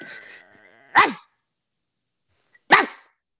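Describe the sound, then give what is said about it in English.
A person imitates a dog barking with two sharp, loud woofs about a second and a half apart, each a short rough burst that rises and falls in pitch, with silence between. “I can bark like a dog”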